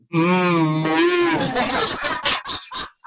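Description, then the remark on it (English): A cow lets out one long, loud, wavering low, then trails off into rough, breathy grunts and huffs. “Cows don't moo.”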